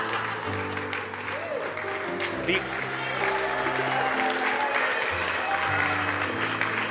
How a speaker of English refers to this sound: Your family's misbehaving. They make everyone clap, so.